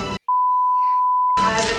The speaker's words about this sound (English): I got a praise beep button Jesus. Somewhere. Hallelujah. I can't I've find it.